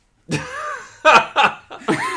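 A drawn-out, throaty burp is followed by three shorter, quick burps in a choppy sequence, fairly loud and voiced, with no talking around them.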